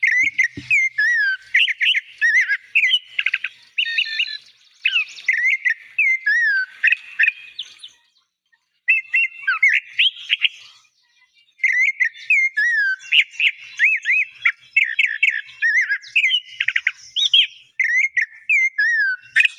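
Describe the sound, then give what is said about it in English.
A clay-colored thrush sings in a garden in Belize, a long, varied song of clear whistled phrases and quick chirps, bright, with brief pauses between bursts and no talking. “These are sweet birds and grace our garden with their songs.”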